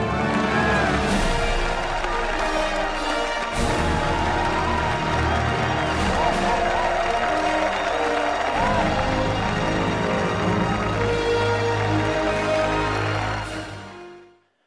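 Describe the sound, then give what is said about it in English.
A large crowd cheers, claps and whoops for Captain America continuously at full volume, a dense roar of applause that holds steady for the whole stretch before cutting off at the end. “Same guy, same crowd.”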